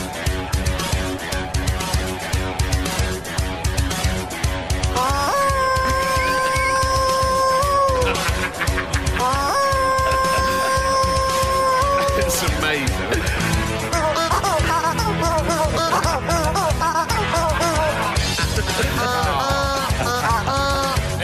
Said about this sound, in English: because I've got more squeaky chicken toy-based content. The lovely squeaky chicken pet toys.